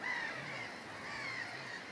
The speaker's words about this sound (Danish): Den impuls har de her måger også. Altså, det må de jo have. Ikke? Det er sådan, okay, jeg er sulten.